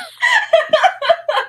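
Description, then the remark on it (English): A voice imitates bird noises: about five quick, clucking, chicken-like bursts in a choppy rhythm, fairly loud, with no other talking. “A zombie, and this … just bird noises.”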